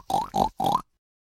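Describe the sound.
A pig oinks and grunts three times in quick succession, each squeal short and nasal with a slight upward lilt, clear, followed by silence; it is Jiggy Da Piggy, a banjo-playing pig who co-hosts a cartoon show.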